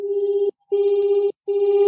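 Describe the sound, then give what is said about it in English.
A binaural beat tone, unmasked without white noise: a steady mid-pitched hum with a slow, gentle pulsing wobble, playing in three stretches broken by short silences, with faint higher overtones above it and no voices. “So let's say the binaural beats sound like unmasked.”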